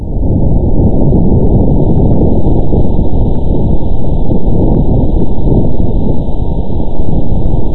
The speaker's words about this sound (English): Why? Just so it actually sounds like something. They did what they needed to do to sort of get a sound out of it. So okay. Here's audio recording number one of vibrations on Mars.